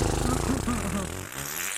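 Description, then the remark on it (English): A voice blows a loud, wet raspberry imitating a fart, a buzzy, sputtering mouth noise that wobbles in pitch and lasts nearly two seconds. “I'm a lady. We don't fart.”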